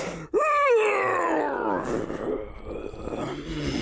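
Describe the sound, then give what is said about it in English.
A person vocally imitates the big, drawn-out yawn of a sleepy character, Braldir, being woken by yelling: a rising, strained groan that slowly sinks and trails off over several seconds, fairly loud. “At him, he does like do like a big yawn, like a.”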